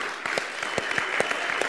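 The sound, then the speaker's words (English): An audience claps hands in steady applause in praise to the Lord, many overlapping claps with a few sharper, louder hits standing out at a roughly regular pace, with no voices. “I just feel like we should just give a big hand clap and celebration of praise to the Lord right now.”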